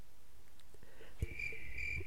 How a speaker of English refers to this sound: Crickets.